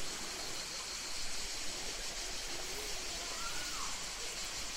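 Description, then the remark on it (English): The Cascade d'Orbre, a natural stream waterfall in the south of France, rushes in the distance in a steady, even hiss throughout, with no breaks or changes in level, while faint, thin insect chirps rise briefly above the wash. “You can hear it probably in the distance amongst the sound of the insects that are present.”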